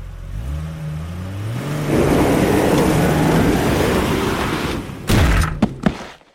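A car engine revs up with rising pitch and roars loudly as a man, having raced back to his car, backs it out quickly without looking, followed by a heavy thump and a couple of sharp knocks like a car door.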